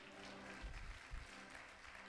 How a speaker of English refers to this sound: Clap your hands and tell God thank you.